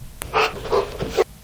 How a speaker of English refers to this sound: And during the break, we found a clip of a dog laughing. It's just a 1-second clip, but it might give you an idea of the sound